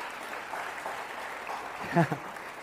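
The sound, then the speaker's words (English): A crowd at a church claps steadily for a few seconds, a dense patter of many hands, after an announcement that the church is moving to two Sunday morning gatherings this fall, with a brief vocal shout rising over it near the end. “All the people who clapped are not serving anywhere, okay?”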